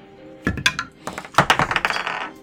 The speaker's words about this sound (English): Is that a dice tower? I love the sound of that. Yeah, he got the black walnut version of this, but with the full tower.